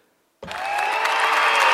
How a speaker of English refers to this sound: I didn't mean to cheer for that. Wrong button. My bad.